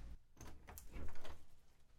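household object, door being opened

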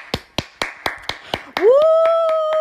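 crowd, hands clapping

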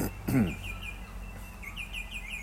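bird, bird song

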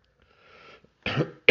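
human body sound, cough

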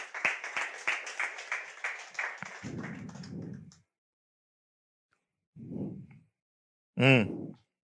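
crowd, audience applauding

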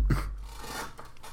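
household object, squeaky chair creaking

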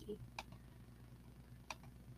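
household object, clicking noises

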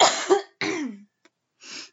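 human body sound, cough

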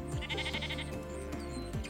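animal, sheep bleating

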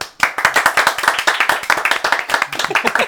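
human body sound, hand clapping

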